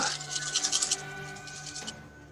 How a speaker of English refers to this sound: That's a lot of dice. I don't like hearing a lot of dice.